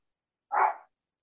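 A single sharp bark from a dog heading out for a walk rings out once, moderately loud, then quickly fades into silence with no voices around it.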